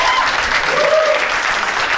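Steady audience applause, a dense wash of many hands clapping at an even loudness for about two seconds, with a faint tone rising briefly through the middle.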